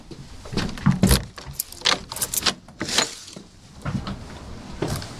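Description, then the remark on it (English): Keys jangle and rattle in a burst of bright metallic clinks, followed by clunks and scraping as a lock is worked and the official keys unlock the front door under the portico of a historic house. “Okay, I'm walking up the steps here, the stone steps, and Kevin has the official keys to the front door under the portico.”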